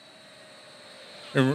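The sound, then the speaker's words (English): A steady airplane engine whine with a low roar underneath, growing slightly louder over a second or so before a person's voice briefly cuts in at the end. “Plane noises.”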